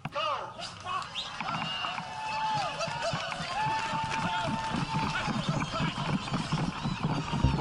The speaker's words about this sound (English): Every runner is paired with a donkey, and when the starting gun goes off, total chaos ensues.